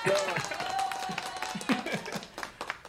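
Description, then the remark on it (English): Canned applause from a sound-effect button: a dense, steady patter of many hands clapping for about three seconds, with crowd cheering and a brief whistle mixed in. “Well, I'm gonna hit the applause button for Juan, man.”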